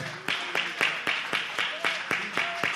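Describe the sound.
An audience, asked to stand and clap as a testimony that God can do the impossible, claps hands together in a steady, quick rhythm, about four sharp claps per second, with faint voices humming or calling beneath the beat.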